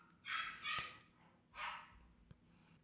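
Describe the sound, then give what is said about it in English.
Small dogs, Morkies, bark downstairs in the background in three sharp, high-pitched bursts, two close together and then one more after a short pause. “Can you guys hear the dogs in the background?”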